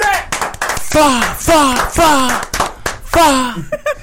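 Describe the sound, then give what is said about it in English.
Steady hand clapping in the iLLANOiZE Radio show studio in Chicago, with a guest's voice making four or five loud, falling, swooping sound effects in rhythm with the claps. “I think he the only person that came and did sound effects to our clapping.”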